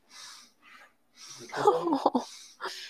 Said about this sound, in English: Who's reverse sneezing?